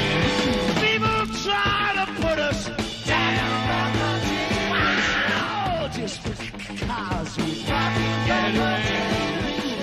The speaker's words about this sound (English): a little yell, a little scream there as I'm winning the top song, … by … at the live at the Leeds